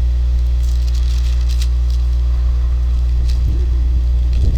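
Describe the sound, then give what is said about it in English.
Thunder rolls as a deep, continuous low rumble that swells slightly toward the end, with faint rattling and no voices. “We'll hope that thunder that we heard kind of keeps moving around us that way.”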